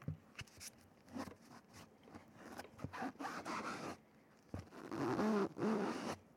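A stiff cardboard book page being turned, a series of dry scraping and rustling bursts that grow louder and fuller toward the end, with no talking.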